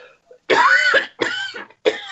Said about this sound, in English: Sorry, I'm going to cough.